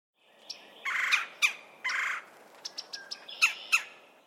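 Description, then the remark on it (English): A red-bellied woodpecker gives harsh, rolling churr calls mixed with sharp chirps, several bursts in quick succession, clear against a quiet background. “So Audubon believed that this bird sounded like he had a pneumonia.”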